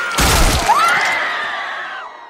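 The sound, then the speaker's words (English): A loud crunching smash like a skull being crushed, a short burst of cracking impact followed by a rising, wailing tone that lingers and fades over about two seconds. “Then I smashed her head in like this!”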